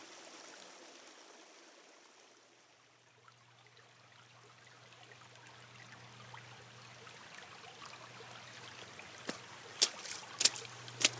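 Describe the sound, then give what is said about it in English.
Steady trickling stream water runs throughout, with a low hum joining partway, then a few sharp splashes near the end as someone wades through the shallows. “On a day like today, splashing through water is rather special.”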